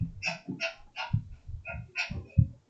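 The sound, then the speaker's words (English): A dog, Darby, gives a rapid series of short, high yips or whimpers, about eight in quick succession, with soft low thumps mixed in and no talking. “What do I hear? A dog.”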